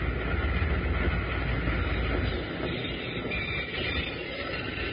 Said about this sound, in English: He's got the train stopped.